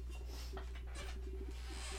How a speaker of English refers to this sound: I'm sorry, my dog was scratching and I didn't know if that was making any background noise.